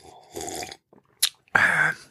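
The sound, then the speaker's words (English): Loud mouth noises with no talking: a person slurping wetly, a brief sharp hiss, then the person yawning, drawn-out with a strained, whistly edge, ending abruptly. “That's a signature sound of the podcast. Me slurping and me yawning.”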